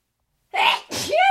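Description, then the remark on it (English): A single loud sneeze breaks a short silence: a sharp breathy burst followed by a voiced, drawn-out 'choo' that trails off at the end. “So I'm going to sneeze.”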